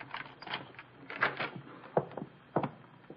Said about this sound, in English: Here is the apartment. Unlock the door.